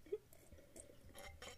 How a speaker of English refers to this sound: Okay, I'm gonna take another sip. Oh, me too. Okay, ready? One, two, three. Okay.